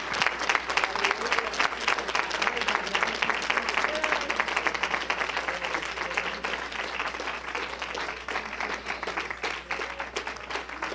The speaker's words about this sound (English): Clap those hands unto Jesus.